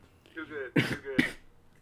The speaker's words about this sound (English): Oh no, I'm coughing. I'm gonna die. Corona.